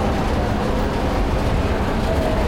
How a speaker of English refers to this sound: And I am in St. Pancras International Railway Station.